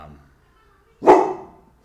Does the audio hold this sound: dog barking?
yes